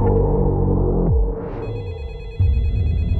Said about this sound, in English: Hey, baby, your phone is ringing. That's not my phone.